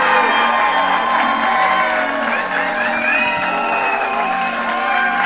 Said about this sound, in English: Kelly Griffin! I'm like, boy, they're clapping hard for my intro,